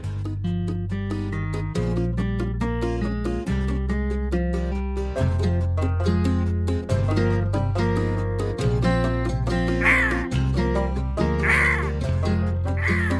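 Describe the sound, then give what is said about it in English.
Voices imitate crow cawing with three harsh, rising caws toward the end, layered over a steady, loud musical track with a pulsing bass and regular beat. “We've now made crow noises on the podcast.”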